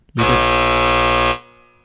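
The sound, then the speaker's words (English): A single loud, harsh buzzer blast holds steady for about a second, like an end-of-game horn, then cuts off leaving a brief fading echo tail. No one speaks. “Dude, it sounds like a buzzer to like missing like the end of a basketball game.”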